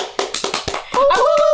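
A few sharp hand claps in a loose, quick rhythm, then a high, wavering tonal sound, like a whoop or whistle, rises over continued clapping.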